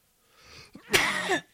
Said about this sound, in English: Excuse me, guys. Sorry for coughing in your ears here.